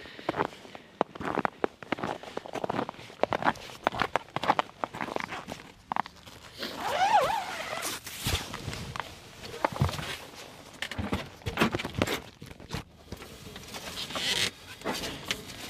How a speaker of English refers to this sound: The sound of my little crampons on underneath my big extreme cold weather boots crunching through the camp on the sea ice.